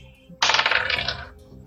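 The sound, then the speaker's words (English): Dice rolled for a saving throw in a game rattle and clatter across a hard surface for about a second, a dense burst of sharp clicks that starts abruptly and fades out, fairly loud with no talking. “Okay, I've been rolling that dice and it's not been nice to me, so let's try this one.”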